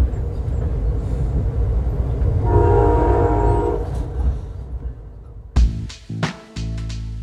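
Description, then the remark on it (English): A train rumbles along the California coastline on a morning with a steady low roar, and a horn blares a sustained tone partway through, followed by a few loud clunks and rattles near the end. “As I watch the California coastline pass by from the comfort of my train seat, remembering Bell's comments made the million-dollar views of the water on a gorgeous morning a lot more unsettling.”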